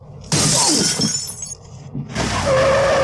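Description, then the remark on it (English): A sudden loud crash as a hockey puck, shot by Fulton Reed at a suitcase in an alley, misses and shatters a van window, glass fragments scattering for about a second, then another harsh burst with a sustained squeal of the van's tires screeching to a halt near the end. No voices. “That was Fulton Reed clapping a bomb at a suitcase in an alley, and it missed and it hit the window of a van.”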